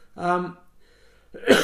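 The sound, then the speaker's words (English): A person makes a short, voiced throat-clearing sound, pauses briefly, then lets out a single harsh, loud cough. “It must be horrible to have that coughing.”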